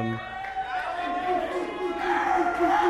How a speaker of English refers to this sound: This is a rowdy crowd tonight. I love it.